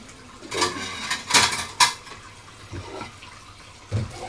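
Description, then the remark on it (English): Dishes, including a flask and a plate, clink and clatter in a sink as they are washed with a sponge and rinsed over a steady wash of running water, with a few sharp knocks early on and softer thuds later, with no talking. “Can I trouble you to wash this flask as well? But with the other sponge, please.”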